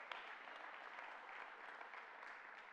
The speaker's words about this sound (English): If you say yes to that today, would you give the Lord a hand clap and say, that's me today.